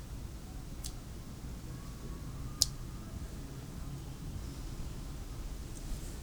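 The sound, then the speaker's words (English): A quick wet splat of paint splashed onto paper, with a couple of fainter ticks around it, all set against a steady low background hiss. “Alright, let's do one more splash here.”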